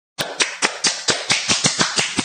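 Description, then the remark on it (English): A quick run of about ten sharp, slightly muffled claps in a steady rhythm, fairly loud, with a dense hissy smack to each one, someone imitating the prime minister applauding at a women's hockey game. “It is, I'm guessing that you are imitating our prime minister applauding at a women's hockey game.”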